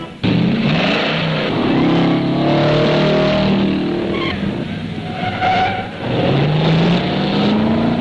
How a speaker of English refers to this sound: Stock and sports cars, as well as reformed jalopies, compete against time over the quarter-mile drag course. These are chopped-down models, a term that pretty much explains itself.